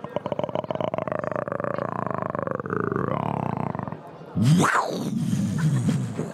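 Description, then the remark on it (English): A person vocally imitates a large wild cat purring, with a steady rattling rumble for about four seconds, then a louder rising-and-falling growl like a snarl. “And then I try to imitate the sound effects. For example, I can purr like a large cat.”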